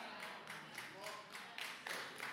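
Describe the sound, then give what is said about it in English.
Three sharp handclaps ring out from an audience, spaced unevenly, with a faint murmur of voices underneath. “Three claps, I get it.”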